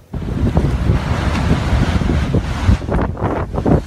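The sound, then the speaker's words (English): Loud, continuous roar of winds from a deadly storm on the U.S. East Coast buffeting the microphone, with heavy low rumbling and surging gusts, mixed with what sounds like crashing surf; no one speaks. “Incredible video showing the damage caused by a deadly storm that slammed the U.S. East Coast this weekend.”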